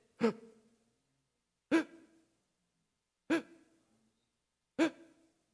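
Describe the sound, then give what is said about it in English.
A voice imitates gasping for air: four sharp, loud inhaled gasps, each brief and breathy with a quick fade, spaced about one and a half seconds apart, with no talking. “You were constantly gasping for air when he stood there by the pit, and it sounded like this.”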